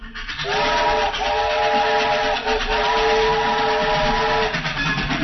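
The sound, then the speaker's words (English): A train rumbles steadily along the track while a loud, sustained steam whistle blows for several seconds over the constant mechanical roar. “And the train is running yet.”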